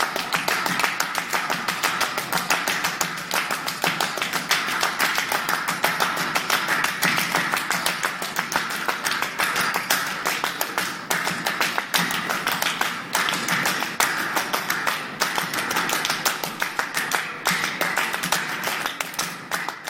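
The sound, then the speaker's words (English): Nine musicians standing at the front of a makeshift stage clap their hands in a performance of Steve Reich's Clapping Music: sharp hand claps repeat steadily in a dense, interlocking rhythm, staying loud and even throughout with no voices. “performance began with a version of Steve Reich's clapping music, with 9 of the musicians standing at the front of the makeshift stage, all clapping their hands in rhythm.”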